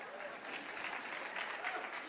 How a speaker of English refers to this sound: Hadn't been booed in a while. Can I get a good boo?